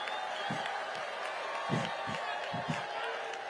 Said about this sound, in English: At a certain point, bro, crowd goes wild. Yeah, because we're all sick of it, dude.